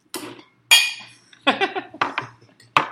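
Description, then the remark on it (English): Empty glasses clink together in a toast, a handful of bright, ringing taps spaced irregularly over a few seconds, fairly loud, with no talking. “So empty glass, click to that. Cheers.”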